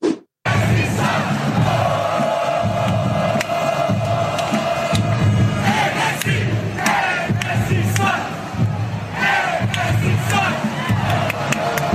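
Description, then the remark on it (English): A large stadium crowd of Nashville football fans at an MLS match chants "Messi sucks" in unison at Messi, a loud, rhythmic, repeated jeering chant that swells continuously over dense crowd roar for about twelve seconds. “This is Nashville fans, and this is the sort of sickening abuse that's being dished out in the MLS.”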